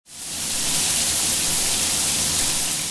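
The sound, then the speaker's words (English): A hot shower runs steadily, its spray making a dense, even hiss that starts abruptly and continues at a constant level, fairly loud, with no voices. “You can thank code if you take a hot shower or a warm bath in the morning.”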